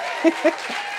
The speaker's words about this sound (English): So, thank you. I love that. When people clap for me, it makes me energetic.